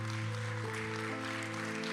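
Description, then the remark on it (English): A church audience stands and claps for Jesus together in a steady, dense patter of hands, layered over sustained keyboard chords that hold and shift underneath. No one speaks. “Let's give Jesus one more big hand clap.”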